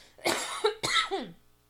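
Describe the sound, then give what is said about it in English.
Two harsh coughs in quick succession, loud and raspy, with a brief throaty tail after the second, and no talking. “There's your weekly coughing hack.”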